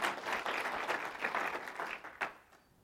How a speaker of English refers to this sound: And that's a good place to applause right there.